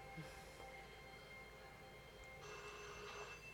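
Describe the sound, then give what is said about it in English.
A telephone rings faintly in two short bursts, one at the start and another near the end, over a low steady background hum with no voices. “Where's that phone?”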